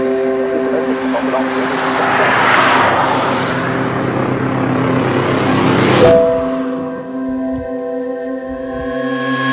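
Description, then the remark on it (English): A child plays with a toy truck that rumbles with a steady, engine-like whir that builds and fades for several seconds, then cuts off abruptly, leaving a quieter electronic hum. Nobody speaks. “What you playing with? You got a truck?”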